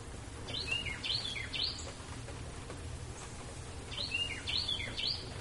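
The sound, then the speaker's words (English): A bird sings a short, bright phrase of quick chirps, pauses, then repeats it, clear over a low, steady background rumble. “my God, birds are... so annoying.”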